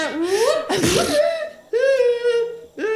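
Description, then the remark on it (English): A loud sneeze: a drawn-out voiced wind-up bursts into a sharp, breathy blast, followed by more strained vocal sounds. “Will you sneeze on her?”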